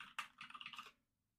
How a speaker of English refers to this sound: You're going to hear some typing right now.